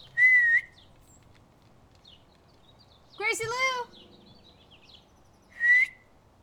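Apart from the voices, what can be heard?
person whistling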